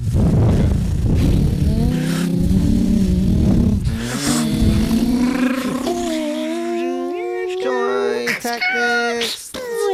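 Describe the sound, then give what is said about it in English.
Several voices imitate a car engine revving together, a loud, buzzy vocal vroom with rising, wavering pitch sweeps that climb higher and break into sputtering bursts toward the end. “Which one are we going with? Revving sound? Revving.”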